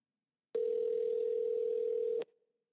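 A single steady telephone ringing tone on an outgoing call, one long even electronic burst lasting under two seconds, clear and fairly loud, then cutting off into silence with no voices.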